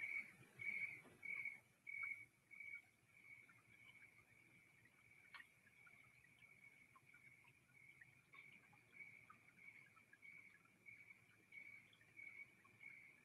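insect, crickets chirping

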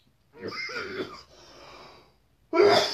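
human body sound, cough

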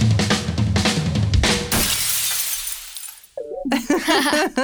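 sound effect, glass shattering

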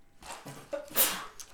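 human body sound, sneeze

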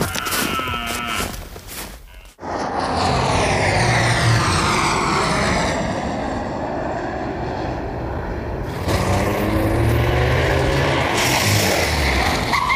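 vehicle, jet aircraft flying

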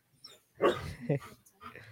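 animal, dogs barking excitedly

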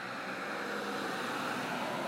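vehicle, car driving past

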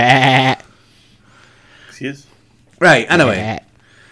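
animal, sheep bleating

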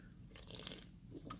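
food or drink, drinking sparkling water

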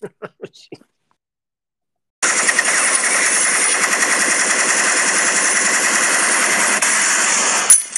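sound effect, gunshots

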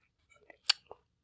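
food or drink, sipping coffee

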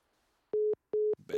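signal or alarm, phone call hang-up tone

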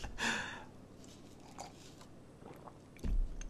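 food or drink, sipping coffee

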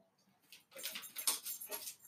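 animal, dog whimpering

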